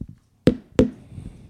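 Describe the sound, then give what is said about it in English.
Two firm knocks on a door in quick succession, each a sharp, solid thud with a brief ringing decay, followed by a faint low rumble. “It's a knock.”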